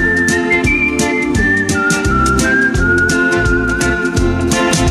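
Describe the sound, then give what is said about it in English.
A clear whistled melody glides and sustains over a full band backing, with a steady bouncing bass and regular percussion beats keeping an upbeat rhythm. No one speaks. “Got a whistle. Yeah. Whistle one time.”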